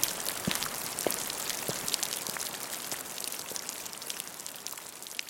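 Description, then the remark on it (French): Steady rain patters down in a dense, hissing wash, with scattered sharper drops tapping throughout. No voices, just the continuous soft downpour. “Il se met à pleuvoir et je n'ai pas de parapluie.”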